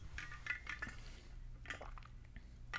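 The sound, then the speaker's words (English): Quiet kitchen clatter of glassware and dishes clinking and knocking several times, with a faint splash of liquid, as someone gets a drink of water, over a low steady hum. “I need to get some water.”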